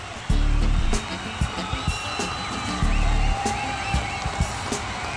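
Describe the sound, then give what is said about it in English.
A steady wash of crowd noise roars throughout as John Madden walks out onto the field, punctuated by two heavy low booming bursts and scattered sharp knocks. “Crowd's getting more excited.”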